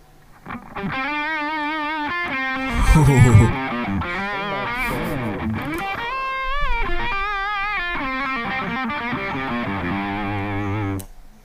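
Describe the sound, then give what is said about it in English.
Distorted electric guitar, an Ernie Ball Music Man Steve Morse Y2D miked with a 57 microphone and played through a distortion pedal, plays a continuous sustained phrase with bends and vibrato, gritty and saturated, fairly loud for about ten seconds, with no talking. “And now here's with the distortion pedal.”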